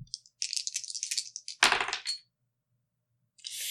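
household object, dice being rolled

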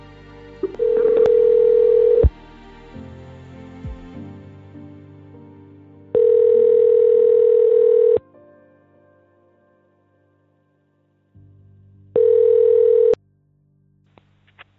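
signal or alarm, outgoing call ringing tone

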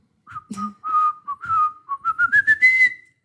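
sound effect, beep boop sound effect

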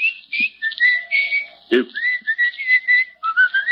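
human body sound, person whistling a tune

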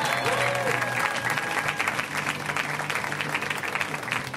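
crowd, audience applause and cheering

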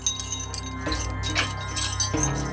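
household object, keys jangling

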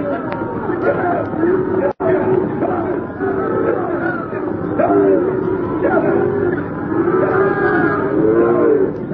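animal, cattle mooing

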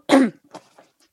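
human body sound, cough

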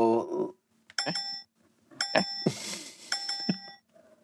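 sound effect, bell ding sound effect

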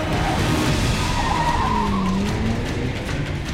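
vehicle, car accelerating hard

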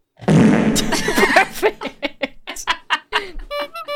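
sound effect, fart sound

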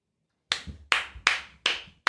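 crowd, applause

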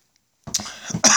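human body sound, cough

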